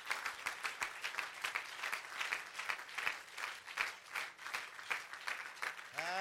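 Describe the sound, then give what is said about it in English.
A church audience claps their hands to the Lord in a dense, continuous wash of applause, steady and fairly loud throughout, with a brief rising vocal tone emerging right at the end. “And let's clap our hands to the Lord.”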